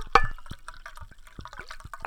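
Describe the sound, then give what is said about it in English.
Liquid splashes and trickles into a cup in a short burst of pouring, with bright drippy splatters and a gurgling fill that fades within about two seconds. “Pour up that CGI. Sound effect.”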